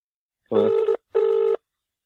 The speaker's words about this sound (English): Hold on, I better explain while I'm calling him.